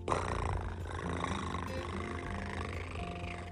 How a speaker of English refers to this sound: picked up this little kitty and she purred.